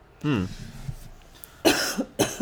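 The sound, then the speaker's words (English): Two harsh coughs come about half a second apart, preceded by a brief voiced throaty sound and a short quiet pause. “What do you say if someone coughs?”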